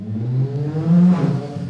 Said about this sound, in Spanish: Muchas gracias al amigo, gracias, de la moto que está afuera. Ya te notamos, amigo. sí, ya, ya lo sabemos, amiguito.